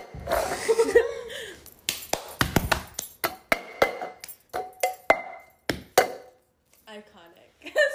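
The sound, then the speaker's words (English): A cup that has just had pens dumped out of it is tapped and banged on a table in a quick, loud rhythmic pattern, a run of sharp, hollow knocks, some with a brief ringing tone, after a short clattering rustle at the start. “I do it better with a cup. Like, I can't do it without it.”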